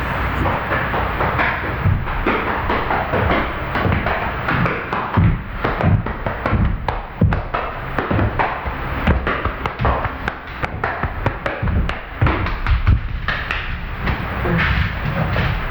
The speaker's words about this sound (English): The lion walked back from the door, beating out a rhythm on his chest.